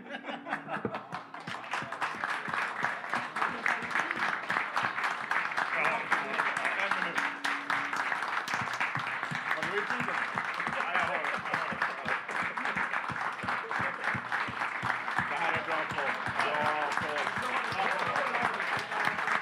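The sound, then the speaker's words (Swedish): A small group claps steadily for about twenty seconds as a one-minute applause, a Hammarby football "silent minute" for supporters, a dense, even patter of hand claps with murmuring voices and a few chuckles mixed in beneath it. “Det vill säga, en minuts applåd.”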